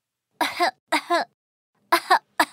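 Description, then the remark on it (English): Four short, throaty coughs in two spaced pairs from Mother Rabbit, a story character with a little cold, coming from the bedroom, each with a voiced, harmonic edge as if acted out by a performer, moderately loud with silence between them. “Mother Rabbit's cough came from the bedroom.”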